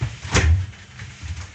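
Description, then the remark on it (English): A refrigerator door opens or shuts with a single dull thump and a brief rattle, followed by a low, soft rumble that fades quietly; no one speaks. “I'll put this back in the refrigerator.”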